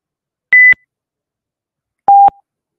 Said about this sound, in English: Brett has a condition where those loud beeps really amplify to him.